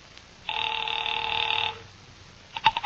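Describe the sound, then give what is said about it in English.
A dial telephone being dialed to call Pacific Seaboard Fidelity: a line tone holds steady for just over a second, falls quiet, then a few quick, bright ringing pulses sound at the end, with no voices. “Mallard left and I took the slip of paper he had given me with Ayers' phone number on it, sat down by Amici's pet aversion and doodled with the dial.”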